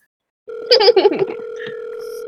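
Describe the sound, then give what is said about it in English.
A telephone dial tone starts suddenly and hums steadily, with a short burst of warbling, ring-like tones near the start, as a phone call is placed to a friend. It is fairly loud, with no one speaking. “I would like to phone a friend, please.”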